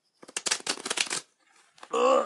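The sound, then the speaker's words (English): A deck of playing cards is riffle-shuffled right by a microphone, a rapid, loud fluttering crackle lasting about a second, followed by a faint rustle and the brief start of a voice. “I'll do it right by my microphone so people can really hear the shuffling”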